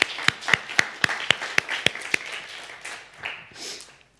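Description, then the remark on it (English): An audience claps in a steady, even rhythm, about nine sharp beats in quick succession, then the clapping loosens into softer, scattered applause that fades out. “So you can clap.”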